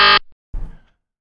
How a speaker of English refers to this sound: Don't honk the horn, please. Oh, you need a double honking.